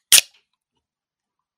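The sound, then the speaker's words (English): A can opening: one sharp, bright crack followed by a short fizzing hiss that fades within a fraction of a second, then silence. No voices. “Okay, so that was a can opening.”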